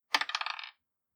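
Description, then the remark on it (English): A quick clatter of two dice rolled across a hard table during a tabletop role-playing game attack on a dragon, a burst of bright rattling taps that rings slightly and settles within about half a second, alone. “I'm retiring both of these fucking dice. They're dead to me.”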